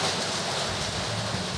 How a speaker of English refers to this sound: That's the rain, guys. I was going to say. Just surprise, surprise, raining again.